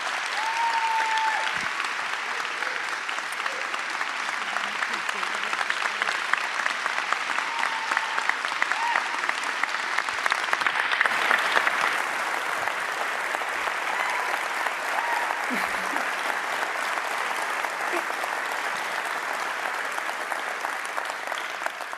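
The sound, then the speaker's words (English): The audience of Community Christian Church applauds a woman as she comes up, thanked for years of service, steadily for over twenty seconds, a dense, even wash of clapping that holds its loudness throughout, with a few faint voices mixed in beneath it. “So let's give her a round of applause as she comes.”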